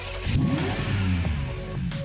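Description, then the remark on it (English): A car's combustion engine revs up twice, rising in pitch from a low rumble and settling back, fairly loud with no voices. “Traditional cars are powered by combustion engines and they use fuel, petrol or diesel, to run.”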